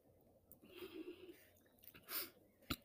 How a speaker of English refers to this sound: Gonna take a sip of water real for a second.